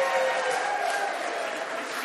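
A crowd claps steadily, a dense, even wash of many hands that holds at a constant level for the whole stretch, with faint voices or whistles threaded through it.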